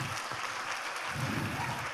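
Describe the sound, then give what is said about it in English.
A crowd at All People's Church applauds steadily to celebrate married couples who stand up, many hands clapping in a dense, continuous patter at even loudness, with a faint voice underneath. “We just want to clap and celebrate you.”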